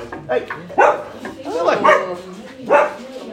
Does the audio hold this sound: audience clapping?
no